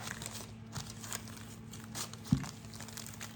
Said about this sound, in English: Okay, I'll peel the paper off. And I just used that paper again, so I'll just put that aside.